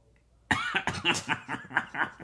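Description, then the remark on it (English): A sudden fit of coughing, several harsh bursts in quick, uneven succession after a moment of near silence, with no talking. “I'm going to cough in a second.”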